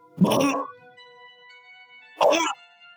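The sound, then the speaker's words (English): A person's voice imitates a dog bark twice, two short loud gruff bursts about two seconds apart, over a faint steady hum. “Did you just bark?”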